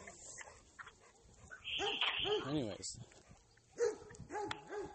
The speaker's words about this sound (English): And more dogs, making more noise. More dogs.